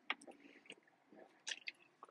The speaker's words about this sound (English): I gotta get a drink of water. I don't know. My throat is really dry right now.